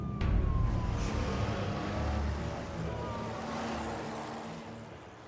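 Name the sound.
police car siren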